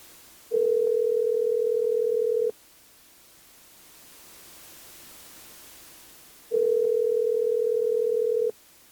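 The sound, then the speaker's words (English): A steady electronic ringback tone of an outgoing phone call to a contact sounds twice, each burst about two seconds long with a long quiet gap between, over faint background hiss. No one speaks. “I'm going to call my contacts. And we're going to have the soapbox together. So, hold tight. Let's see if this one's going to answer.”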